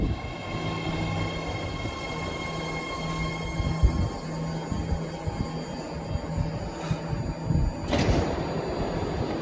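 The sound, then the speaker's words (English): A BART train arrives at Lake Merritt station in the Bay Area, an Orange Line train to Richmond. It rumbles in with a steady electric whine and hum, followed by a sharp clunk and a loud hissing whoosh as the doors slide open. “Millions of people in the Bay Area recognize that familiar sound of a BART train arriving.”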